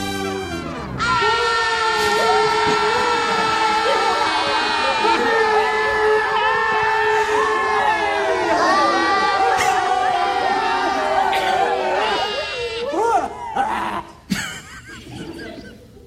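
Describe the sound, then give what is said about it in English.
A long, sustained horn blast, blown by priests at Jericho after marching around it seven times, holds steady for about twelve seconds while all the people yell loudly beneath it, the shouting rising into scattered whoops as the blast fades out. “And just like God said, when they finished marching, the priests blew one long blast and then all the people yelled.”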